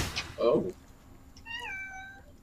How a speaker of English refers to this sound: And now we have a cat staying in the States, a cat saying hello to a delivery driver.